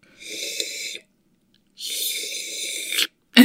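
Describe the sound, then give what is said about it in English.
A voice imitates a man slurping from a cup: two drawn-out, airy sucking noises, the second longer than the first, followed by a short sharp sound at the end. No words are spoken. “So, he was, like, slurping on his, like, I do not think there was coffee in there. It was like this.”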